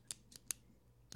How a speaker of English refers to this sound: What are you clicking?